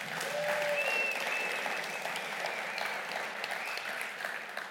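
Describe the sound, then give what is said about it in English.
An audience claps steadily and densely for several seconds for a musician who had played worship music that night. The applause is a sustained wash that tapers slightly toward the end, with a faint tone or two sounding briefly early on. “Give Jeremy a round of applause.”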